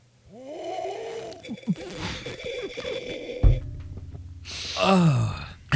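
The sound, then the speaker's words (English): A loud, drawn-out slurping sip of peppermint from a ridged character mug, airy and whistling with wavering high squeaks, a soft knock midway, then a final sharp squealing slurp. “Something about the shape of this mug was very high pitched.”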